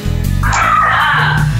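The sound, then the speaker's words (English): A miniature schnauzer barks, one loud, high-pitched, drawn-out yapping call lasting over a second, with a steady low hum underneath and no talking. “No, that's my miniature schnauzer. He's hyper today.”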